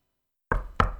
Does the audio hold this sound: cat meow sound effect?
no